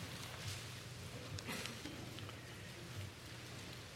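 Many book pages are turned at once as people look up Galatians chapter 4, verses 6 and 7. A soft, steady papery rustle runs throughout, with scattered brief louder flips and crinkles. Nobody speaks.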